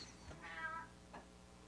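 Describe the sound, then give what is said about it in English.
A cat, nicknamed the reboot cat, meows once in the background, a drawn-out harmonic cry, followed by a shorter second call, faint against a quiet background with no talking. “It was the reboot cat in the background.”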